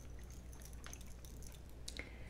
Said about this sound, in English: I'll do a little spritz.